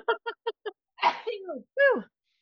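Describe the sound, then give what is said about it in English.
Four quick catching breaths build up to a single forceful sneeze, followed by a couple of short voiced groans or exclamations from the same person. “And I'm going to sneeze.”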